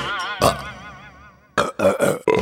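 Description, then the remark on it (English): A long, loud, wavering burp rumbles for over a second, followed after a short pause by several quick, rough burping bursts. “And, you guessed it, you'll burp it out pretty fast.”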